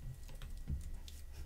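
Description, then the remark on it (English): Quick, steady keystrokes clatter on a computer keyboard as someone types "Utah Raz" to look up Utah Jazz rankings, a run of crisp taps with a slightly louder click midway, over a low background hum. “I actually typed in Utah Raz.”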